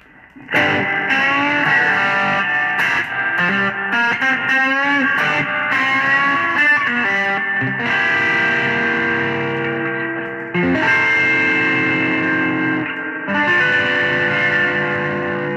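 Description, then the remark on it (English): An electric guitar played through a '65 Deluxe Reverb amp emulation, strummed chords ringing with a slightly gritty, effects-laden tone and a wash of reverb, steady and fairly loud with no talking. “Let's do the 65 Deluxe Reverb.”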